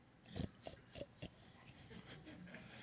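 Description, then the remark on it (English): A voice imitates pigs with four short, punchy grunts and oinks in the first second and a half, followed by quieter rustling background noise. “Don't you see these are the highest rated AAA ultra luster surface blemish free grunt, grunt, oink, oink.”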